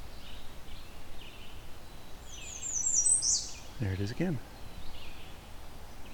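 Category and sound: bird, warbler song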